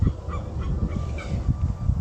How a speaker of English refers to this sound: I think that was is that a swan? I can hear the calls of swamp birds nearby. I'm right near a swamp. If you just look at if you look at Ray Marshall Park on the map, you'll be able to see satellite pictures, right? And you'll see the big swampy area